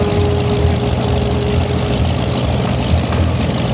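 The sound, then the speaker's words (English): A motor launch engine drones loudly and steadily as the launch races off toward Tonawas Island: a dense rumbling roar with a faint whining tone and throbbing low pulses running through it, no voices. “The launch races off toward Tonawas Island.”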